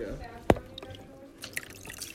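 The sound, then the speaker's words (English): A single sharp plop as a phone drops into a bucket of water, brief, followed by a few faint drips and soft background murmuring. “And I dropped my phone in the water bucket.”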